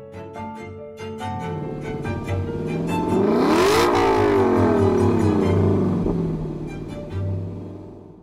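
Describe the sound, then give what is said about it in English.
An LC sports car engine revs up and accelerates past, its harmonic whine rising in pitch, peaking loudly around the middle, then dropping as it pulls away with a steady rumble. “I can only imagine how satisfying it would be to be in a car that as it revs up and gets faster is making these perfectly pleasing intervals that everyone wants to listen to.”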